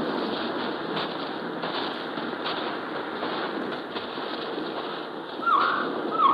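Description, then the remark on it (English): Two short, whistling bird calls ring out near the end, rising over a steady hiss of night ambience, with no voices present. “What was it? Could be a bird, or could be a signal.”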